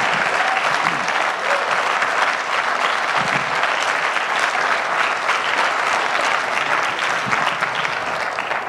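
A church audience bursts into steady, sustained applause for God, a dense wash of many hands clapping at an even, loud level for several seconds with no talking over it.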